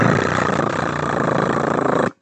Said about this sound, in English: But the old dial tone was actually kind of a sound that was more like...